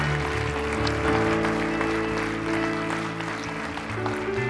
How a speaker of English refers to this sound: If you believe that, give Jesus one big round of applause. We believe that. It's for the whole world.